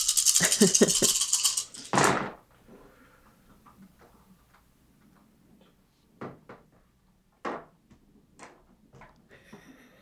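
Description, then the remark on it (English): A loud clatter of several dice rattling together for about two seconds, then a few sharp, scattered clicks as they tumble and settle on a hard surface; a large pool of dice, including a hunger die, rolled for a game check. “Sorry, I got a lot of dice.”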